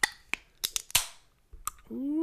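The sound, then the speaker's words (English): A Lagunitas beer bottle is popped open: a few sharp metallic clicks, then a louder pop trailing into a short fizzy hiss, another click, and a voice starting at the end. “And it's not a bottle, but I will be popping that bottle with that, you know.”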